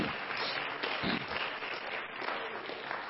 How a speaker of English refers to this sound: And why don't we all just give our guests a good hand clap today for being in church with us.